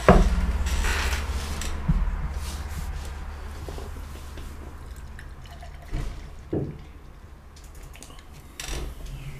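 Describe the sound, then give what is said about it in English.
Beer glugs and splashes steadily into a glass, with a fizzy hiss and a few sharper drips and knocks near the end; no one speaks. “I poured too much.”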